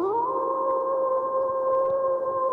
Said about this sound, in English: This is not someone to howl about, but, well, let's go ahead and do the howl.